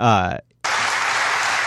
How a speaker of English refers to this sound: See how Trump knows how to wait through the applause like most politicians don't? He immediately pivots.